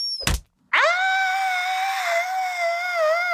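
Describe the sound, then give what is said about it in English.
A brief dull thump as a headlamp hits the ceiling, then after a short silence a loud, sustained, high-pitched scream of fright at a surprise party that holds steady for a few seconds, alone. “… jumped so high, his headlamp hit the ceiling, and then he screamed.”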